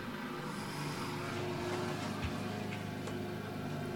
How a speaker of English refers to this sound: I bet my neighbor is mowing.